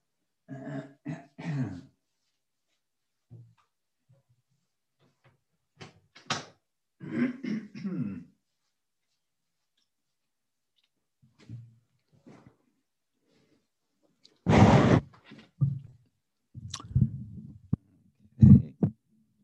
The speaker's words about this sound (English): Okay. Excuse me, I'll be back in just a few seconds to close the door.